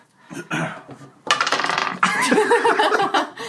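Dice knock and clatter across a tabletop in a quick burst of rattling impacts, fairly loud, followed by bright jangling with faint laughter mixed in.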